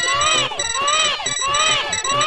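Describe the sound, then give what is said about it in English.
A loud, shrill siren in a Nintendo video game, heard at a character's introduction, wails continuously, its harmonic-rich pitch sweeping up and down in rapid cycles about twice per second, over a low pulsing rhythm. “The siren is so unnecessary.”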